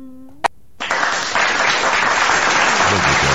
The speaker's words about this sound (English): I'll give you a round of applause for that.